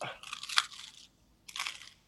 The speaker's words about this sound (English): I'm going to eat some of this toast. Excuse the crunch, people.